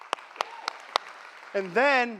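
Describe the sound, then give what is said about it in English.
A speaker during a church service gives four sharp hand claps at a steady, deliberate pace, crisp, before a person's voice begins speaking right after them. “And then, I'm clapping again.”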